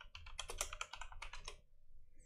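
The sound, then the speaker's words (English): Quick, uneven bursts of typing on a computer keyboard as a web search for "dog beer" is entered, a dozen or so crisp clicks over about a second and a half, then a short pause with faint tapping at the end. No one speaks. “Look up dog beer, and I think John is one of the first results because he did a review for a dog beer.”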